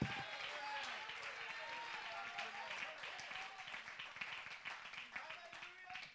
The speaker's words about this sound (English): Oh, clap your hands. Shout unto the Lord.